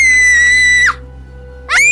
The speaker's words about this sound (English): The quick pull breaks a small bone in … arm. She yells in pain.